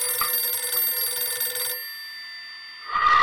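A telephone rings with a bright, trilling electronic bell for about a second and a half, then stops, leaving a faint hum before another sound briefly enters.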